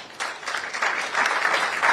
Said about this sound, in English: The aim of the award is to encourage the less endowed schools to excel at the competition. I thought you would clap for...